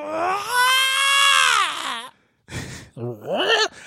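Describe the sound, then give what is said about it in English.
A voice mimics the scream of the X-Men character Banshee: a long, high, strained wail that bends down in pitch, then a breathy gasp and a shorter rising shriek. “Wolverine puts his hands over his ears as Banshee's screaming and saving his ass.”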